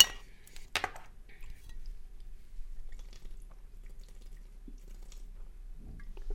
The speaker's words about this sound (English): All right, a little bit of sippy water for dead air. Give me a minute.